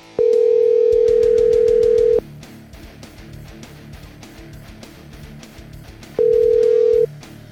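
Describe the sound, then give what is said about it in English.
An outgoing phone call's ringback tone sounds twice, a loud steady buzz of about two seconds, then a shorter burst after a pause of several seconds, over rhythmic background music. “It sounds like it's a live call because I like to put that ringtone in there.”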